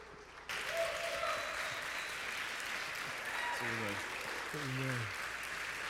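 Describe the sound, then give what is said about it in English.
An audience bursts into sustained applause, a hand clap of praise to God while welcoming a visiting preacher from Newport News, Virginia, a dense wash of clapping that starts abruptly and holds steady, with a few voices calling out in rising whoops over it. “Come on, give God a hand clap of praise in this place.”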